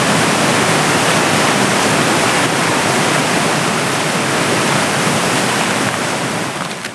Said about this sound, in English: My thoughts were just a mere reflection of the river's continuous crash.